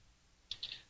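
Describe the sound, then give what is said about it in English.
A short, quick burst of typing on a computer keyboard, a few crisp key clicks after a moment of near silence, fairly faint and with no talking. “No typing.”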